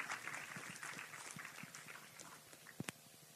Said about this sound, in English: a warm applause here this morning.